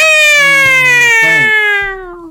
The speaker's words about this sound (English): Meow. Yeah. That hurt your ear? Yeah.